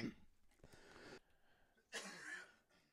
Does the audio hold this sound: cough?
yes